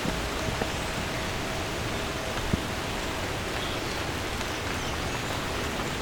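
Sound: rain falling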